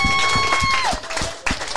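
A crowd claps in a dense, steady patter for the winner of a game, with a sustained electronic tone that drops in pitch partway through and rhythmic low thumps underneath.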